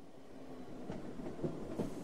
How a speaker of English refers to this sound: The train arrived, but Shirley's ex-husband wasn't on it.